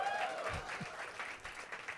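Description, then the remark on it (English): An audience bursts into steady applause, a dense, continuous wash of many hands clapping at once, moderately loud and sustained throughout with no one speaking over it. “That's the applause.”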